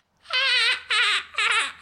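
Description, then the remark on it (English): A person imitates a dolphin with three loud, high-pitched warbling squeals in quick succession, each wavering in pitch and breaking off briefly between bursts, with no talking. “That's my dolphin noise.”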